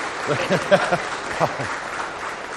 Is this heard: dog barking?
no